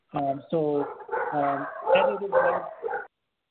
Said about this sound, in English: I think the dogs have something to say too.